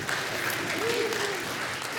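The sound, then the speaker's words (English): Steady audience applause, a dense wash of many hands clapping at an even, fairly loud level throughout, with a faint voice briefly rising underneath midway. “I figured, like, if we were talking to a bunch of women, they'd be like, oh, you know, but you guys clapped.”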